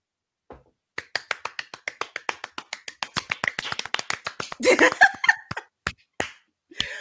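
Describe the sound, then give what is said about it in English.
A run of sharp, steady hand claps from a small group, with a short burst of whooping and laughter partway through before the clapping trails off into a few scattered claps. “Cue the cheers, friend, and cue the applause.”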